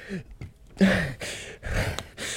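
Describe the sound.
A person imitates heavy, rasping breathing: four or five loud, breathy inhales and exhales in an uneven rhythm, with a slight voiced groan in some breaths and no talking.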